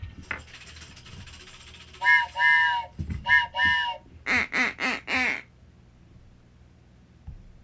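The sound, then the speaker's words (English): A duck whistle blown loud, giving a run of nasal quacks: a few drawn-out paired honks, then four quick choppy ones, with faint murmuring before them. “Like, me with duck whistles.”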